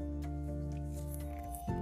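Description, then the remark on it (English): Soft papery rustles and brief crinkles as pages of a journal are turned while it is read aloud, fairly quiet, heard over a steady sustained musical drone. “These can't be my words, and I'm sorry you hear my pages turning, but know that I am truly reading from this journal.”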